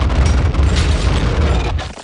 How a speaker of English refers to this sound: We come back from commercial, and it's just at the point now where every sound they make, every syllable, just causes another avalanche. I think when we yelled, we caused another avalanche.